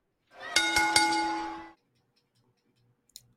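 A bell rings with several quick, clanging strikes over about a second, its bright metallic tone humming steadily before fading out. A short faint click follows after a pause.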